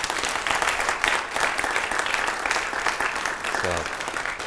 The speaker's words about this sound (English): Yeah, I'm very grateful for the vicar. Yes, round of applause for the vicar, even though we're in church.